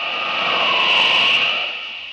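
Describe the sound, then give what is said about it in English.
A speeding train travelling at 90 miles an hour roars past in a steady, loud rushing whoosh that swells to a peak midway and then starts to fade. No voices are heard. “90 miles an hour. Good speed for a train, but it can't leave Superman behind.”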